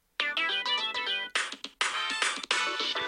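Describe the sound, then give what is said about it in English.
A phone's clock-app timer, set for 20 minutes and placed next to a microphone, goes off: a loud, bright electronic melody of stacked harmonic tones, playing continuously with brief gaps between phrases, no voices present. “When the timer goes off, we're going to hear this sound.”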